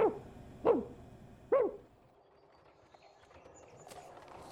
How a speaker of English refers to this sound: the glass dog barked so fiercely that he dared not knock, and returned in great haste to his own room.